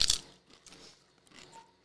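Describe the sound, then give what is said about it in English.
A sharp, loud crunch as a dry, crisp lime-flavored chip is bitten, followed by softer crackly chewing bursts that fade in and out. No one speaks. “Let's try out our lime chip.”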